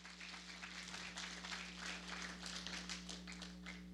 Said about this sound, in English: And there were 67 people who came with us on that first Sunday, which was awesome. You can clap. Yes.